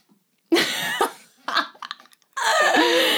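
Several harsh, close coughs break out one after another, the first and last long and rasping with a short hack between, loud and clear with no talking over them.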